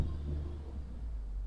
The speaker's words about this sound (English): It's a milk truck.